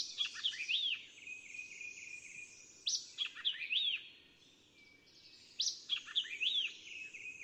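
A white-eyed vireo sings the same quick, snappy phrase of chirps and slurred whistles three times at regular intervals, clear, over a steady hiss of insects in the background.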